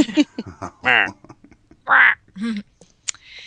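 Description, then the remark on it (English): A voice imitates a duck with a run of loud, nasal quacks, several bursts of uneven length and spacing packed into a few seconds. “Sorry about that. I had a duck in my throat.”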